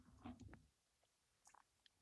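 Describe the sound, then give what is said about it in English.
Chewing of a spicy chicken sandwich from Wendy's: a dense burst of wet, crunchy mouth sounds at first, then a quiet pause and a few softer smacks and crunches, with no talking. “…, what are you munching on, dude?”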